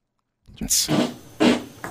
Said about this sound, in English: Let's go to the actual fart. Here we go. Right here.